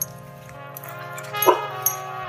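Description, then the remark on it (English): A dog, Blue Dog, barks once during a recording with a live studio audience in Austin, Texas, a short sharp bow-wow midway through, over a steady tonal hum, with a fainter yip following soon after. “This show is a production of eBusiness Brands and is recorded in Austin, Texas, with a live studio audience, including Blue Dog”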